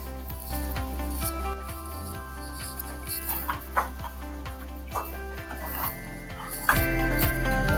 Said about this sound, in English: You know what happened? As soon as you started the podcast, my dogs came in.